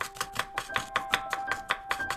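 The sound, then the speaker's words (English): Rapid, steady chopping of vegetables on a cutting board, about a dozen crisp knife strikes in an even rhythm, clear, with faint sustained tones in the background. “So let's practice chopping with the side of our hand on the count of three.”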